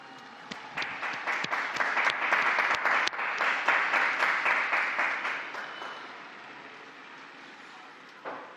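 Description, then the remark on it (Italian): A crowd breaks into steady applause for the newly canonized Argentine saint Maria Antonia della Paz y Figueroa, many hands clapping in a dense, crackling wash with a few sharper individual claps, building quickly, holding, then fading out with a last scattered clap near the end. “Un applauso alla nuova santa.”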